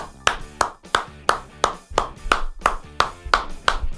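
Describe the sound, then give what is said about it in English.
Polite, measured Wimbledon-style tennis clapping in a steady rhythm, about a dozen crisp claps from what sounds like a small group, moderately loud, with no voices. “A Wimbledon tennis clap.”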